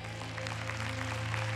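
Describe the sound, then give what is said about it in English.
A crowd of people claps together in a dense, steady patter that keeps going for the whole moment, with a low electrical hum sitting underneath and no voices. “Come on, clap.”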